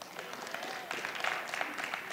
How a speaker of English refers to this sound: Now that's better. The boos have calmed down and got a few hand claps now.